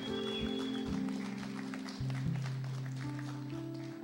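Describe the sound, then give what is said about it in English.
A crowd claps steadily for the worship team throughout, a dense crackle of many hands, while sustained keyboard chords shift slowly underneath. “Give the worship team a hand clap.”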